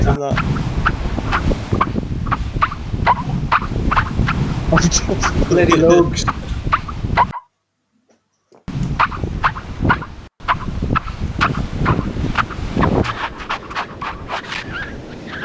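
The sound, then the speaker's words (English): Squeaking sand, also called singing sand, crunches and chirps in a steady series of sharp, high, squeaky pulses like footsteps, with a short silent break partway through before the rhythmic squeaking resumes. “It's called singing sand or squeaking sand.”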